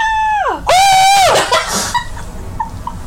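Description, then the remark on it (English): A person imitates Cindy's frightened scream at the Grinch: a high squeal that drops in pitch, then a loud, sustained shriek for about a second before it trails off into quiet noise. “And Cindy just screams, seeing this, and the Grinch screams back, like, here, you do Cindy scream it all to the Grinch.”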